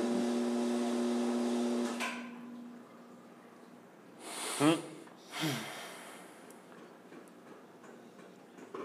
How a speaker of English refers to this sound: Oh, you can hear her breathing, all right, motherfucker.